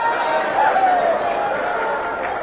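A crowd roars and cheers in a steady, dense wash of many voices, loud and sustained for a couple of seconds without any single voice standing out.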